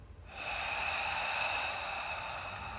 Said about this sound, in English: We're heavy breathing. It's the hatred coming out of my body.